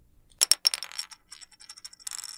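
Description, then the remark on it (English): A coin flipped in a game of heads or tails hits a hard surface with a few sharp metallic clinks, then rattles and spins with a bright ringing tone before settling on tails. Fairly loud, with no voices. “The coin. Is it heads or tails?”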